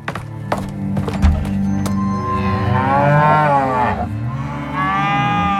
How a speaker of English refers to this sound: Cattle moved across Manhattan from the fodder to the slaughterhouse.